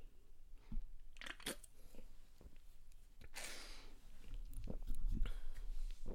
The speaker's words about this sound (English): I'm about to take a sip of this right now. Hold on.